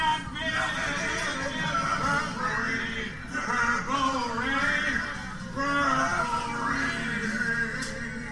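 A man belts out a song loudly and aggressively, his strained, wavering voice carrying over a steady backing track for the whole stretch, with brief dips between phrases.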